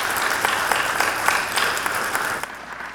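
A crowd applauds with a dense, steady wash of overlapping claps and a few sharper standout hits, thinning slightly toward the end. No one speaks over it.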